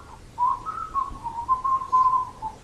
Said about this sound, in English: This lady turns around and she says, oh God, don't whistle.